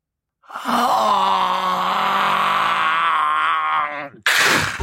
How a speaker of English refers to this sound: I came to before I'd opened my eyes, and I'm so thankful I didn't immediately do so. I could hear the groans, the dripping of the meat. The gaudy, shambolic outfit swam into focus. The meat clown was leaning over me, making that fucking noise.